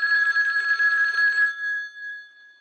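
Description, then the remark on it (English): A telephone bell rings once in a loud, rattling burst lasting about a second and a half, then its metallic tone lingers and fades away. No voices accompany it. “Until the phone rings.”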